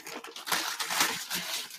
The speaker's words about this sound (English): Oh, yeah. Rip that paper.